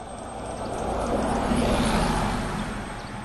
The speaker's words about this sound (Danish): Nu kommer der en bus, den har flag på. Den kører til Stege.